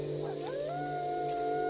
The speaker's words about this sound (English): That was close. Maybe it was just an animal. Coyote that got too close?